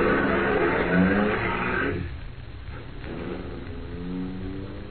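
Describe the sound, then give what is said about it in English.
A car engine rumbles loudly for a couple of seconds, then quickly drops away as Harris drives off, leaving a low, fading motor hum. “When Harris drove away, I walked over to my car and got in.”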